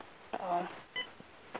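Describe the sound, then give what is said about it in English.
A muffled, narrowband phone line breaks up: a short burst of garbled voice, then a brief pair of electronic beeps, with the connection fading between them. “We're going dead on the phone.”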